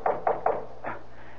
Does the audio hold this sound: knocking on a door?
yes